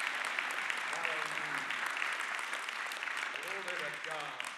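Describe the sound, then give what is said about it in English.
An audience at a morning church sermon claps hands in a dense, sustained wash of applause that holds steady throughout, with a few voices calling out over it now and then. “Someone clap your hands and receive this morning.”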